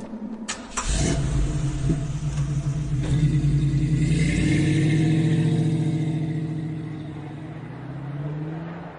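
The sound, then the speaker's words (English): A car engine starts with a short burst, then rumbles loudly and revs up, its pitch rising steadily as it drives off, fading slightly toward the end. No one speaks. “You have a car.”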